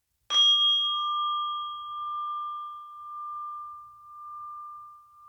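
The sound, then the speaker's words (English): A single mindfulness bell is struck once to start a mindfulness practice and rings out clearly, its bright tone sustaining and slowly fading with a gentle wavering shimmer over several seconds in an otherwise quiet space. “I'm inviting the bell to start this mindfulness practice.”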